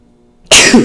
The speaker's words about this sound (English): Fuck, sorry. I had to sneeze there.